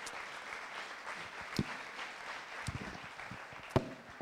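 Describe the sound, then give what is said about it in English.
A crowd claps steadily in a dense, even patter of hands, with a few louder, sharper claps popping out above the wash. No one speaks over it. “Another round of applause for John.”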